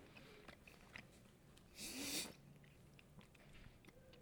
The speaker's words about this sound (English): Awkward chewing. Awkward if you say it's awkward. I was eating awkward.